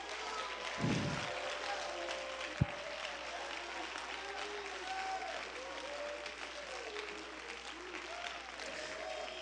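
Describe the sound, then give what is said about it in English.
An audience claps hands in a dense, sustained wash of applause lasting the whole stretch, steady and fairly loud, with faint voices and brief tonal murmurs mixed underneath. “Clap your hands with me right now.”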